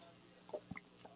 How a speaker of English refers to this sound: Note, I just took a sip of my coffee. Did you hear it? Did you hear that sip with the new special microphone cover?